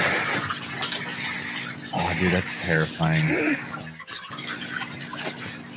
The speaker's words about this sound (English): Wait, but why is there water filling that up?